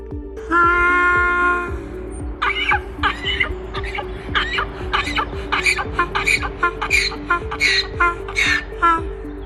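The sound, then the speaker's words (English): A donkey brays: a long, strained, wheezy tone, then a rapid series of harsh, rasping honks pulsing in a steady seesaw rhythm for several seconds, over a low background hum. “Side note, I'm not actually sure I know what a donkey sounds like because I looked it up to insert a funny little hee-haw sound effect, and all I found was this.”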